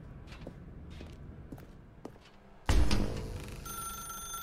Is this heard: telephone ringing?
yes